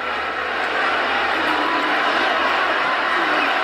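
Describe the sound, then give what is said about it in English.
A sold-out arena crowd in Milwaukee roars loudly and steadily, the dense wash of many voices filling the space without a break, chanting at wrestler Roman Reigns that he sucks. “The sold-out crowd here in Milwaukee telling Roman Reigns he sucks.”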